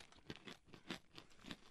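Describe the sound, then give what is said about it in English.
Crisp crunching of everything-bagel-flavored pretzel chips being chewed, with about five or six dry, crackly bursts in a steady rhythm. It is fairly soft, and no one speaks. “Pretzels are dry, but they're still delicious, and I like the crunch.”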